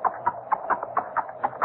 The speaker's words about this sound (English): That horse is no recording. It's either a mounted policeman or...